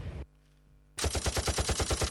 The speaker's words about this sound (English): Guns and explosions?